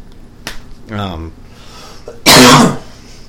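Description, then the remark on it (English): A short throat-clearing rasp followed by one loud, harsh cough, with a faint click near the start and quiet room tone around it. “Excuse me, I'll forgive me my cough tonight.”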